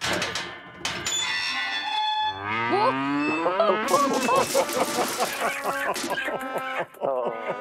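A cow moos loudly, a long, drawn-out low bellow that rises and wavers, followed by shorter groaning moos against a busy farmyard background.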